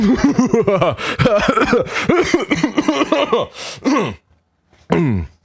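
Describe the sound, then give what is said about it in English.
A voice imitates heavy, labored breathing inside a space helmet with a rapid run of loud gasps and groaning sighs, a brief silence, then one more strained breath. “Heavy breathing in a space helmet for a moment.”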